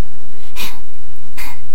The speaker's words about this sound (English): It was him with the creepy breathing.